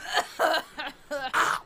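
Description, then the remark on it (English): Five quick, raspy coughs in an uneven rhythm, fairly loud, the last two slightly strained and voiced, with brief gaps between them and no talking. “I slam my hand out of my pocket like I'm coughing.”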